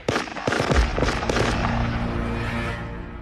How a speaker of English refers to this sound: We just heard a couple of gunshots.